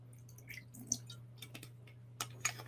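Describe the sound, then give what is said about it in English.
Soft liquid sounds as about two tablespoons of apple cider vinegar are spooned into a bowl with an ordinary eating spoon: a few small drips and wet clicks of the spoon, with a light squish, scattered over a faint steady hum. Fairly quiet, and no one speaks. “I'm gonna add 2 tablespoons of apple cider vinegar.”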